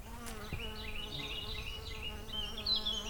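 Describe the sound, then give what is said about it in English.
A steady outdoor drone of insects buzzing and chirping across the horseshoe, with high chirping calls flickering across the top. The hum stays fairly even throughout, with no voices, traffic, sirens or other mechanical noise. “You can hear the insects chirping.”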